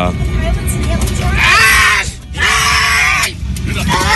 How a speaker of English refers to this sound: That's the most terrifying part, is hearing the poor man yell like that. I mean, oh, it's horrifying.